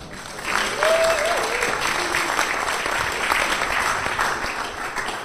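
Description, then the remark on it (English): Sustained crowd applause for golfer John Rahm as he takes the long walk on at an event, dense and steady clapping from a sizable audience, with a brief cheer or whoop rising above it early on before the ovation gradually tapers. “John took the long walk around there to milk the applause, which was plenty and fulsome and deserved.”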